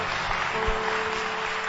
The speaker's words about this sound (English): clap for them, show them love. Keep clapping until they are done.